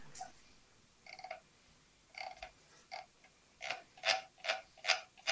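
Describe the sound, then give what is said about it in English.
Rhythmic scratchy grinding, like a pencil being sharpened: short rasping strokes, sparse at first, then quicker and louder toward the end, with no talking. “Sounds like you're sharpening a pencil.”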